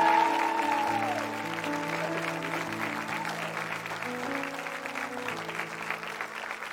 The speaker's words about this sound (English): What I want you to do is I want you to stand on your feet and give a huge round of applause to my dear friend